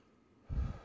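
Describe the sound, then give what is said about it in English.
After a brief quiet moment, a single short, breathy rush of air sounds, like a deep breath being let out, with no talking. “Let's take a deep breath, and as we spend this time with the Lord, we'll ask his blessing.”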